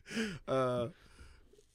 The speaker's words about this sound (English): Yeah, you're boring. Boring. You're boring. Your own story's boring. You're yawning in the middle of your own story.